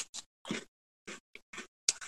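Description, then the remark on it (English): Crisp crunching as someone bites and chews a crunchy biscuit: about seven short, dry, crackly bursts in an uneven rhythm, fairly quiet, with no talking. “I love that sound as well. They're lovely and crispy, right? They're kind of crunchy.”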